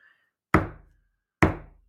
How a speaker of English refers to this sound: Oh God, I can't think of a noise I hate more than that persistent knock. Please go away. Just leave me alone and let me be.